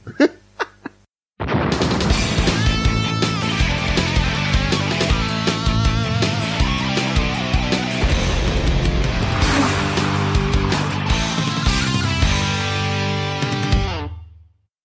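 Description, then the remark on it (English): A few brief clicks, then a loud, dense blast of audio from the racing video game Need for Speed on the 3DO, engine roar layered with busy music, running steadily for about twelve seconds before cutting off abruptly. “Need for Speed on the 3DO.”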